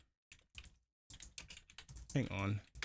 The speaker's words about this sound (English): Hang on. I love how you can hear the two of us typing at the same time.